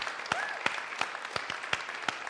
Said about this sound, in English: Let's give them a clap today anyway.